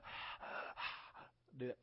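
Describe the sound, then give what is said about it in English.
A voice imitates heavy, rasping mechanical breathing like Darth Vader: three or four harsh, hissing in-and-out breaths in a steady rhythm, loud, ending with a brief voiced grunt. “That sounds like Darth Vader, right?”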